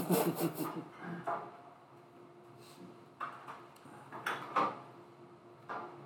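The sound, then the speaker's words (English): Dice clatter in a quick burst of sharp clicks and rattles, then a few scattered clacks follow after a quiet pause. The sounds are moderately loud, and no one speaks. “I hear the sound of dice and I don't like it.”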